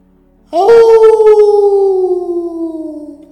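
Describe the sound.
A person imitating a wolf howls back with a loud, wolf-like howl, one long sustained note that starts abruptly and slowly slides downward in pitch while fading, with no other sounds around it.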